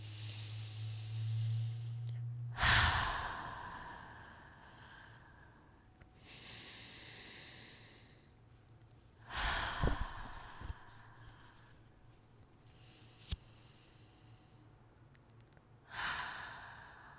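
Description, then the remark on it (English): Five slow, deep breaths alternate between audible inhales and longer exhales in a steady rhythm, with soft airy hiss and no talking. “All right, so let's, I already shuffled, but let's take 5 deep breaths, okay? So breathe in.”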